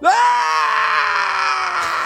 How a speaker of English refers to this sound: you got a live scream for us?